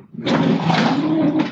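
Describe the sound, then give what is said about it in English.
A heavy game drawer slides open with a steady, rumbling scrape that lasts about a second, loud, then stops abruptly with a brief final knock. “you can probably hear me open my game drawer.”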